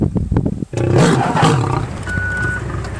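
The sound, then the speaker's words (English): A lion attacking a man in a video lets out a loud, sustained roar with a deep, rumbling growl that swells after a few short thumps and scuffles, then continues snarling under a thin steady tone. “I'd like to play a video for you of how lions attack.”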